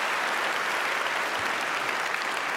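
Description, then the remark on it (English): Steady, dense applause from a crowd, a continuous wash of clapping at an even loudness that holds for the whole stretch with no voices rising above it. “Let's hold our applause to the end so that I can be sure.”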